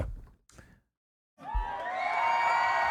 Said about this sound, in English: Let me get some applause in there for him. There we go. Perfect.